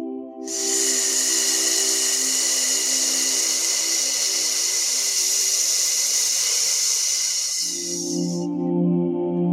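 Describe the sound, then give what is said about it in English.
A person presses the top and bottom teeth together and exhales, making one long, steady snake-like hiss through the clenched teeth. It lasts about eight seconds, loud and even, over a soft, constant low tonal hum. “And as you exhale, I want you to make a snake sound, letting the air out of your mouth in between your teeth.”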